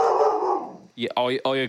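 A dog lets out a few short, loud barks with a howling, drawn-out quality, coming close together after a brief stretch of softer, noisy sound.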